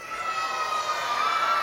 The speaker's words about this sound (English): I am wondering who's in the room who is under 12 years old? Give us a shout. Yell out if you're under 12. If you're under 12.